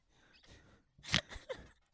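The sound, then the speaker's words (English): A woman snores: a few rough, breathy snores coming in uneven bursts with the loudest in the middle, each a short raspy rush of air with no talking. “What's that? I don't she's snoring.”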